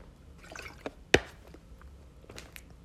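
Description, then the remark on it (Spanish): A quiet sip of water: a few soft wet smacks and a sharp swallow click, with no talking. “déjenme darle un trago al agua, amigos, amigas.”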